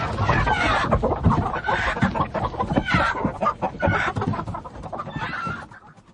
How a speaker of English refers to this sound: Where's that damned hen got to? Come here, you brute!